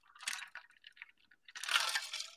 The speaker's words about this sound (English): That was a ranch water. Big gulp before we get into that.